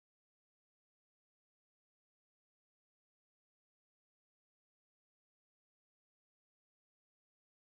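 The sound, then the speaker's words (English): Complete digital silence for nearly eight seconds, a total recording drop-out with no voices, hiss or background noise at all. “Kicked us out of the room on accident because I got too excited with the elk call.”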